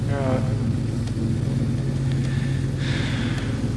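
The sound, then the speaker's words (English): A steady low mechanical hum of a running lift (elevator) drones continuously throughout, with faint higher whirring and brief clicks on top and no pause in the drone. “When the hum stops, you know it's stopped.”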